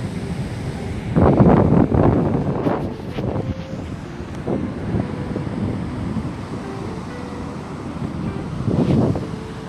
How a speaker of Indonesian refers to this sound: Ya begitulah suasana di pantai, duduk di pinggir pantai di pasir ya. Dengan mendengarkan suara ombak yang gemuruh banget.